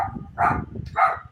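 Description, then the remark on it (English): Two loud, sharp barks from a guard dog about half a second apart ring out over a low background rumble. “Sorry, we got like a Cujo here.”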